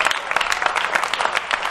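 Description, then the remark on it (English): A steady flurry of hand claps from several people, overlapping into a dense, crackly patter that holds at an even loudness throughout, with no voices. “Oh, listen to the hand claps.”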